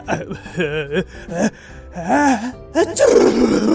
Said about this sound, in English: And Alabaster sneezed again. The force of the pickle flying out of his nose sent him falling back through the clouds.